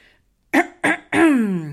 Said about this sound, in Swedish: Muffin harklade sig.